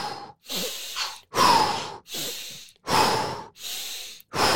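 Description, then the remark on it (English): Loud breathing in a steady rhythm as part of a daily breathing-technique practice: a sniffing inhale through the nose followed by a forceful, blasting exhale through the mouth, repeated about three times with no talking. “I like to do like a daily practice of breathing techniques where I first breathe in through the nose, like, and then very explosively out through the mouth.”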